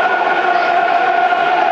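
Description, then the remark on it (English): A football crowd roars steadily in support of the Lions during a match against Reading, a dense, continuous wall of cheering voices that stays loud and even throughout, with no single voice standing out. “Crowd trying to get behind the Lions, dear listeners. Urge them on.”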